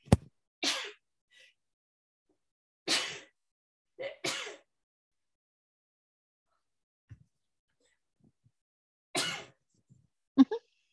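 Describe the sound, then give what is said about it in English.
A series of sharp sneezes spaced out over several seconds, some coming in quick pairs, with brief breathy inhales between them and no talking. “I need to take a pause because I'm going to sneeze.”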